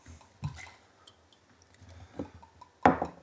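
Peanut butter flavored whiskey poured into a glass: a quiet, brief liquid trickle punctuated by a few sharp knocks and splashes, the loudest near the end, with no one talking.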